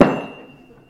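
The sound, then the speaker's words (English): A single loud hammer blow lands, a sharp crack that rings briefly with a faint metallic tone before fading out over about a second. “You got your hammer at home? All right. Who's going to clean this mess up?”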